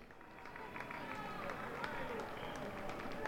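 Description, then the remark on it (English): A steady wash of outdoor crowd noise from spectators cheering runners of the Rome Marathon at Largo Argentina in Rome, Italy, with scattered claps and indistinct voices blending together. “If you were wondering what the cheering is behind us, that is the marathon, the Rome Marathon, going on right behind us.”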